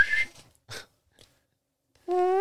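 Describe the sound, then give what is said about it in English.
A short high whistle, some breathy noises and a pause, then a loud, sustained whistled call that rises slightly in pitch: someone imitating a Sasquatch whistle. “Oh, I heard a Sasquatch whistle.”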